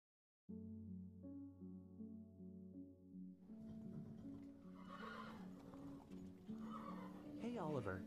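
A horse whinnies loudly near the end, its shrill, wavering neigh rising above steady background noise, with hooves clip-clopping and a low sustained tonal hum throughout.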